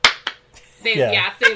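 hand clap

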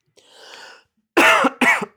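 coughing and throat clearing

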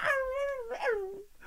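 dog whining

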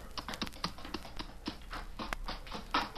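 horse hooves clip-clopping

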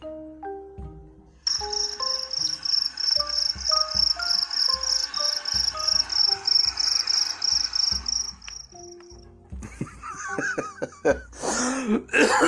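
crickets chirping

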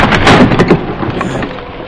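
thunderstorm with rain

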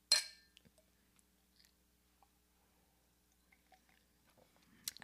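champagne glasses clinking

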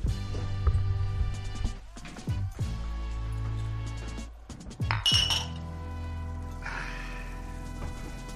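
glasses clinking together

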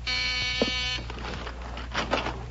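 front door buzzer

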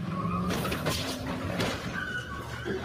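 car skidding

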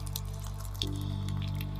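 liquid dripping

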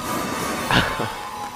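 rain and thunder

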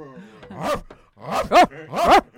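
dog making noise

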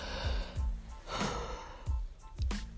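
yawn

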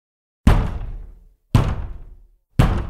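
banging on a door

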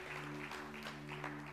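audience hand clapping

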